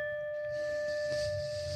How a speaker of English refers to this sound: Return with the next deep inhalation. Follow the sound of the bell and return with the next deep inhalation, please.